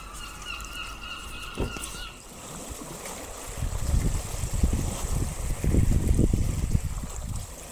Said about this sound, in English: And here's some seagull noise and some sea noise that I recorded on my one permitted walk around my hometown.